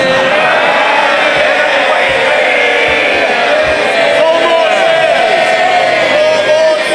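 A dense, sustained roar of many voices cheering and shouting together in parliament during questions to the Prime Minister, loud and continuous for several seconds without a break.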